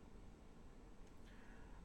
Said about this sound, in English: The fuck was that? Oh, it's my cat.